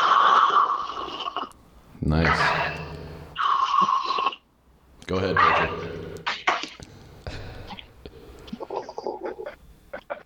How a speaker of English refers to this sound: So let's all take big slurps of our coffee here to start things off here.